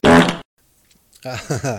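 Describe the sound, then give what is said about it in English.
A loud, buzzy fart sound effect blasts for under half a second, then a pause of near silence before a voice starts talking. “And deserves the Emmy, in spite of the fart sounds.”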